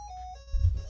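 An electronic alarm sounds, a steady high tone that drops to a lower pitch partway through, with a low rumbling thump underneath near the end.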